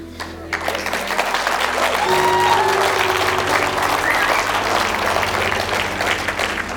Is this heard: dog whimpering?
no